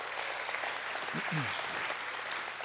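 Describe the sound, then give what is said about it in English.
A large crowd applauds steadily at a church gathering at Barker, a dense wash of many hands clapping at once, with a brief low vocal sound rising faintly beneath the clapping. “And what's most exciting, we can clap about that.”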